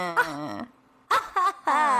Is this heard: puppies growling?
yes